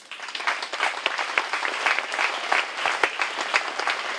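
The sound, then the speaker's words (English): A crowd applauds steadily, many hands clapping in a dense, continuous patter with scattered sharper claps standing out, fairly loud and sustained throughout without voices. “I want to clap for you because you have won a mighty victory to be here today.”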